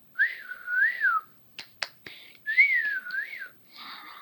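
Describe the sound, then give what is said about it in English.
A shrill two-finger whistle, made with fingers stuck in the mouth, sounds twice in rising-and-falling swoops, separated by a few sharp snapping clicks, fairly loud with no voices. “… stuck his fingers into his mouth and then let out a whistle.”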